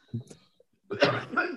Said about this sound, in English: Excuse me. Still got a bit of a lingering COVID cough.